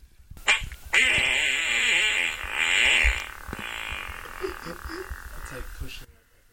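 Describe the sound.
A voice imitates a strained, forced fart: a sustained buzzing, sputtering raspberry lasting several seconds, loud, with wavering pitch and a few squeaky bursts trailing off at the end.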